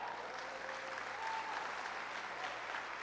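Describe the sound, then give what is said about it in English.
Steady applause from an audience for the speaker's wife, who has been asked to stand, a dense wash of many hands clapping at once, moderately loud and sustained without pause or voices on top. “Don't clap too loud, because she might be a little crazy because she married me.”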